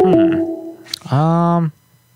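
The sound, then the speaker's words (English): A steady electronic voicemail beep tone on a phone line holds for nearly a second, then a brief pause and a second, buzzier tone of about half a second, followed by quiet line hiss. “Please leave your message after the tone.”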